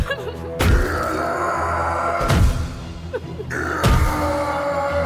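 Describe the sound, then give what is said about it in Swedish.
Three heavy crowbar blows strike a laundry room door at a steady, slow pace, each a loud thud with a short ring, leaving marks on the inside of the door, over a low sustained background drone. “Hon hör hur smällarna fortsätter i jämn takt och ser hur insidan av dörren börjar få märken från de kraftiga slagen.”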